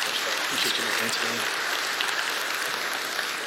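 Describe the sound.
A church audience applauds a speaker coming up to share the word at a morning service, a steady, dense wash of clapping that holds at an even level for a few seconds, with faint murmuring voices underneath.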